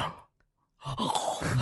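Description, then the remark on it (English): A short breathy intake, a brief silence, then a longer, louder voiced gasp with a small hitch of breath caught inside it, like a gasp stacked within a gasp. “I gasp within my gasp. My normal gasp did a mini gasp inside of it.”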